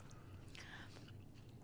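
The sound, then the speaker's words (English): Soft chewing of a squishy, gummy, non-sticky food, a brief moist crunch in the middle over a low steady background hum, with no talking. “After the first couple chews, you're like, oh gosh, what is this taste I have in my mouth right now?”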